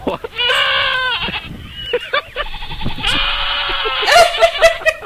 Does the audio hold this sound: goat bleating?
yes